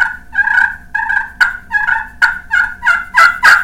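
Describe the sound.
A hand-worked turkey call plays loud: a steady run of raspy yelps broken by sharp, clicky clucks, ending in a rolling purr, with no voices present.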